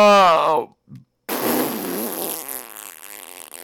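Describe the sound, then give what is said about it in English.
A pet sleeping in the middle of the SQHQ studio gives a brief low groan, a short pause, then a long, loud, rasping fart that sputters on for a couple of seconds, with no talking. “So he'll be in the back, you know, moaning and groaning and farting a lot.”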